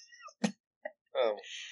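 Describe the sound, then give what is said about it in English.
A person imitates a cat, with a few short high chirps and squeaks followed by a longer, drawn-out meow, all fairly loud with brief gaps between. “Like, I tell you guys about my personal life, but not stuff like the noises not the cat calls I make.”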